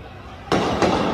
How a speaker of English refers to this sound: Gunshot.